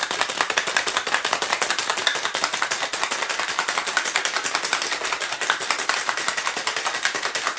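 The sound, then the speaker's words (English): A cocktail shaker full of ice, 1.5 ounces of Luxardo and 1.5 ounces of fresh squeezed lime juice is shaken hard and fast for about 10 seconds: a steady stream of sharp clattering hits without pause, fairly loud with no talking. “Now give that a good shake, 10 seconds or so.”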